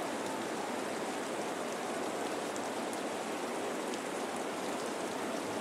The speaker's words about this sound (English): And it looks like this one will be called for rain.